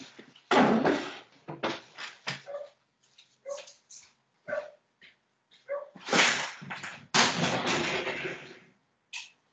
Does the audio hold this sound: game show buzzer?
no